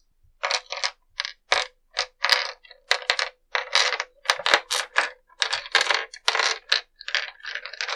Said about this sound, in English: Yes. I heard quite a bit of dice moving around. That was just one. Just one.